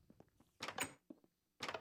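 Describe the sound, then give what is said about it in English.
Two bursts of a creaking, scraping trap door swinging open, with faint low knocks between them; moderately loud, no talking. “Oh, there's a trap door.”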